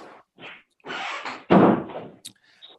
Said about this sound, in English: Let me shut the door. Hang on.